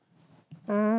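A loud, sustained buzzing fart noise, like a blown raspberry, bursts in after a soft, low rumble and a brief pop, holding steady through to the end.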